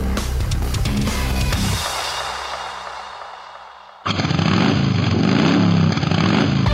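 A loud motorcycle engine revs hard with a throaty low rumble, fades briefly, then cuts abruptly back in at full, roaring volume. No one speaks.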